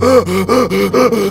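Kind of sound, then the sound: vocal imitation, imitated heavy panting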